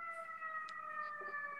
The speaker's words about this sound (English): and there's another siren. Chicago is popping tonight. Let me tell you what. Busy Friday night.